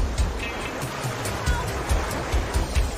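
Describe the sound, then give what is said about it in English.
Ocean waves break on a beach in a steady hiss of surf, with low rumbling surges rolling in every half second or so, fairly loud throughout; the shallow water has a very strong rip current. “In a very strong rip current.”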